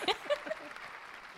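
A short burst of audience applause, a steady wash of clapping with a brief vocal whoop or cheer at the start, fading slightly as it goes on.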